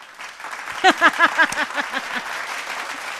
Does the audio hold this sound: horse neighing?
no